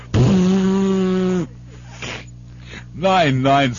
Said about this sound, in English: Excuse me, I gotta blow my nose.